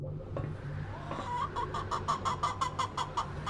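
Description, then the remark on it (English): Hens cluck and squawk in a quick, rhythmic burst of about a dozen sharp calls over a low droning background hum. “Those don't look like very friendly birds.”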